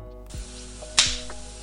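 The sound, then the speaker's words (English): A single sharp, crisp slap to a person's face lands with a bright smacking crack, preceded by a soft low thud and followed by a brief fading hiss, with no voices. “I did what any rational human would do, and I slapped him in the face.”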